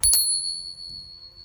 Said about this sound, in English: Somebody gave me a bell. Nice. Are you going to use that every time you say bullshit?